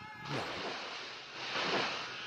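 Loud, churning water splashes continuously, surging at the start and again near the end, with no voices.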